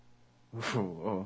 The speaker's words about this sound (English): Oh, no. The cats are at it again. Yeah. I'm sorry.